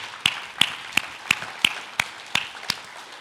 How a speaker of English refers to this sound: So let's give them a round of applause for that effort.